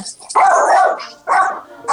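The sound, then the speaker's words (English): A dog barks loudly at the door as somebody arrives, two sharp, drawn-out barks separated by a brief pause, with a bit of high hiss around them. “She be acting like she a real guard dog.”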